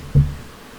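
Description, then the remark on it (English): A single short, deep burp, a low guttural rumble lasting a fraction of a second before fading into quiet. “That was a good burp.”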